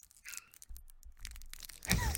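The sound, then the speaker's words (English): A candy wrapper crinkles in a run of irregular, sharp crackles, fairly quiet at first and swelling to a louder, denser burst at the end, with no one talking. “That's actually a candy wrapper. I know, it sounded like a crackling fire.”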